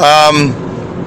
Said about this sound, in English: I'm doing the show on the road. Right now we are on the New York State Thruway. We're headed southbound.